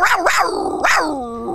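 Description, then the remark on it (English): A human voice imitates a lion's roar: a few loud, rising-and-falling growling bursts that trail off into a long, sinking moan, with no other sounds. “That was a lion sound, but it sounded more like a bad dinosaur.”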